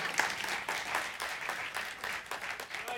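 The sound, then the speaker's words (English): A crowd applauds steadily, many hands clapping in a dense, crackling wash that holds an even level throughout without any talking over it. “You can clap now.”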